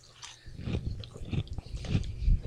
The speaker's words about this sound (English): These chips have a light and airy texture that'll keep you munching and crunching. Munchos. Yeah, they do taste like... They do have the texture of munchos.